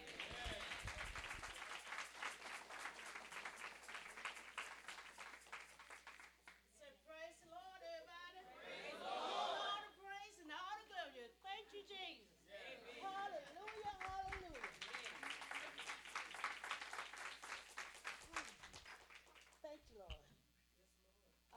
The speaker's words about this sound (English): Please give a round of applause for Minister